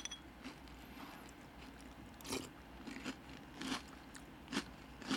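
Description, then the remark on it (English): Crisp crunching of dry, wheat-free peanut butter cereal being chewed, with several sharp bites at irregular intervals over a low background hum, no talking. “Crunchy. I get some peanut butter on the back end.”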